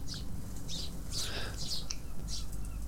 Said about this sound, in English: Some birdsong in the background there.